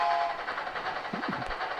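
A train horn sound effect blares over the steady rumble and rattle of a passing train, one short continuous blast lasting under two seconds, fairly loud and with no voices.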